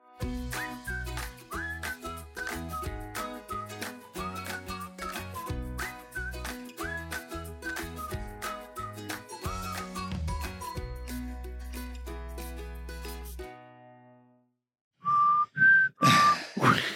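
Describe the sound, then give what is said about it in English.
Someone whistles a melody over a busy, rhythmic music track during a recording pause to plug in a low battery; the music stops abruptly, and after a brief silence a few short, clear whistled notes ring out on their own. “I haven't been whistling this whole time.”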